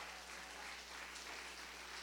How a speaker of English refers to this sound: Somebody give the Lord's word a hand clap right there.